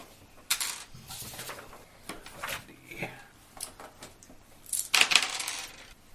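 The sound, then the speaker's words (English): Dice clatter and tumble across a table in a few quick bursts, with a sharp rattle near the start and a louder skittering burst toward the end. “Is one of those dice special? No. One of those dice needs to be special.”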